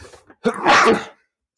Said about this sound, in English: I'm sneezing now. I don't know why.